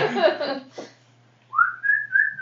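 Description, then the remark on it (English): A person whistles a single sustained note that rises and wavers slightly, clear, following a brief burst of speech-like sound and a short pause. “whistles, all four heads like snap to you.”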